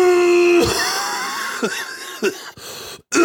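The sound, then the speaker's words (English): A few harsh, raspy coughs burst out one after another at uneven intervals, following a brief low hum. The coughs are fairly loud, with no talking. “It's not all performative coughing. Sometimes you just gotta cough.”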